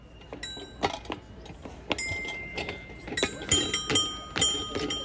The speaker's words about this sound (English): And in many of the playgrounds, they had these panels on the floor where you could jump on them and they would make these bell tones. And so I recorded my girls jumping around on them. I believe this was St. James Park.